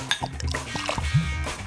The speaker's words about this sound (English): Yeah, pour it into your empty glass. Get the pouring sound.